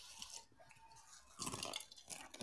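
Crunchy chewing of a carrot by a man, with irregular bursts of crisp bites and grinding, loudest in a couple of spells toward the end, no talking.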